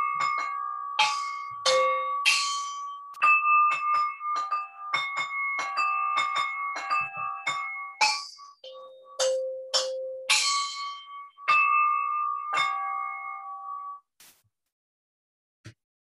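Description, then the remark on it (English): Many bells, small and large, ring together in a busy, overlapping peal, bright clangs striking in quick succession with long sustained tones, loud, ending with a few final strikes as the ringing dies away. “And the sound of bells filled up the whole town.”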